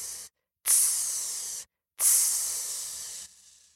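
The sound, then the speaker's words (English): A voice imitates a boa constrictor's hiss: a brief hiss, then two longer, bright, sharp sibilant bursts separated by short silences, each fading gradually, with no talking. “Next came tss.”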